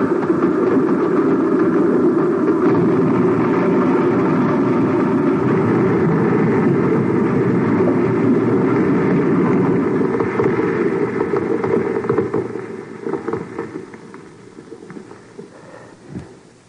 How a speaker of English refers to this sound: Like a railroad train. Must be some of those loading cars running in this tunnel.